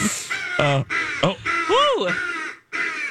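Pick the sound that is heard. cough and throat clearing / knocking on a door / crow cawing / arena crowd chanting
crow cawing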